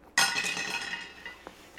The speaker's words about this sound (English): Roll, make a fortune roll quick. Roll three dice.